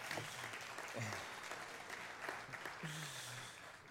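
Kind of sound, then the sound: crowd, audience clapping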